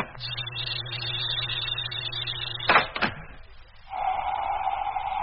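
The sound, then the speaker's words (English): A sci-fi airlock door to a space truck's living quarters is opened over a steady mechanical hum: two sharp hissing clunks in quick succession, a brief lull, then a new higher droning tone starts and holds. “Well, then we'd better let ourselves in. Open the airlock.”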